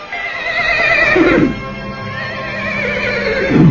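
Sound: horse neighing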